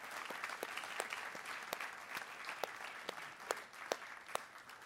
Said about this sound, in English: Can we just give God just a hand clap of praise and thank Him for what He's done?